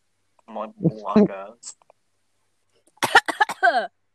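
A person coughs several times in a quick, close burst, following a short stretch of wordless vocal sounds and a pause of silence.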